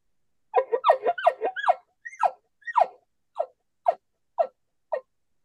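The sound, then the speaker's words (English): Imitated elk chuckles made while raking a tree, with moans: a quick cluster of throaty, grunting calls that then slows into single, evenly spaced grunts, each dropping in pitch, with silence between and no talking. “Just some chuckles like that, rake the tree, do a moan. You know, elk-y type sounds, you know, moans and groans, chuckles.”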